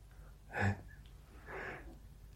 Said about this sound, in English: snoring. That little boy. I swear I fall in love with him every day. Just hearing him making these weird noises.